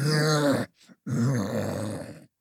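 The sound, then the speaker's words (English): A voice imitates a muffled dragon moaning and roaring while strapped down as energy is sucked from its chest: two long, low, strained groans with a brief breathy catch between them, rough and throaty with strong low harmonics. “You hear the moans of the muffled dragon roaring, strapped down as energy gets sucked from its chest.”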